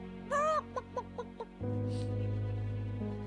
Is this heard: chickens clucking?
yes